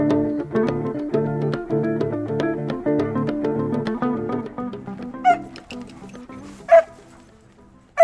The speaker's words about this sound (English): Gio, come here, puppy. Come on, puppy. Let's go. Good boy. Good boy, Gio.